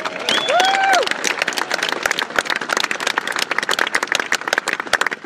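A crowd at the Lynch Championship presentation claps steadily and densely for the chairman of the championship committee, with a single loud whooping cheer rising and falling near the start before the applause carries on alone.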